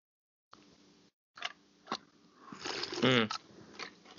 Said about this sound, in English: Mm. Oh, there's the sip, y'all.